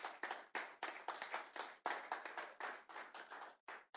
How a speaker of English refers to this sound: Clap your hands if you know it's true.